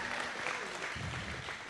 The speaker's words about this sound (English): Hey guys, before we get going, I want to just have you guys give a big clap for the people that are back in the kitchen